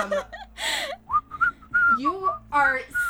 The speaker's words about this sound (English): you're whistling.